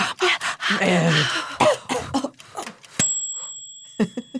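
Several harsh coughs and throat-clearing sputters in quick succession from a person who has eaten something spicy, followed by a bright bell-like ding that rings out before a few more short coughs.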